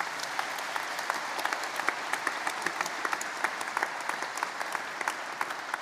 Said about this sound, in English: All our volunteers. Let's just give them all a nice big round of applause.